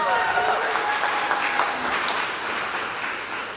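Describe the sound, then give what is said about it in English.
Sustained applause from a crowd at a church gathering, given to thank supporters, a dense wash of many hands clapping at a steady, fairly loud level, with faint cheering tones mixed in and easing slightly toward the end. “So I just want to give them a round of applause.”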